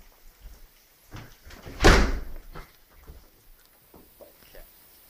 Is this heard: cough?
no